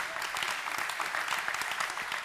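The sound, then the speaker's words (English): An audience claps steadily, a dense wash of many overlapping hand claps at an even, moderate loudness with no voices on top. “Anytime you think, should we clap now?”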